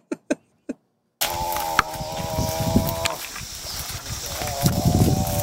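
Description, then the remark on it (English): Three quick clicks, then a buffalo's long, loud moo takes over: a rough, rumbling, guttural bellow that holds steady for several seconds, harsh and almost motor-like. “Okay, so it's a pretty badass sounding moo, I guess.”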